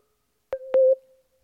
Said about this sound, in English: There was like a weird sound. That I think that was a Skype sound. No idea what that meant.